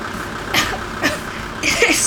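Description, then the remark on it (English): A machine that generates artificial car exhaust, a blend of carbon monoxide, nitrogen, sulfur dioxide, benzene and formaldehyde, runs with a low, steady mechanical drone, broken by three short hissing puffs of air, the last one longer and louder. “This machine generates a custom blend of carbon monoxide, nitrogen, sulfur dioxide, benzene, and pure unfiltered formaldehyde.”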